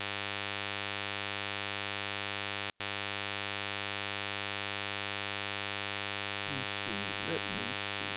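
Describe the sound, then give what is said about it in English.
A steady electrical static hum on a telephone line drones continuously with a rich stack of buzzing harmonics, cutting out for a split second partway through, then continuing as faint muffled voices creep in near the end. “I want to try to get this static up out of here.”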